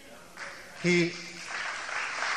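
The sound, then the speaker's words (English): A crowd breaks into clapping, a steady wash of many hands that carries on to the end, with a man's voice briefly speaking over it. “Oh, don't clap.”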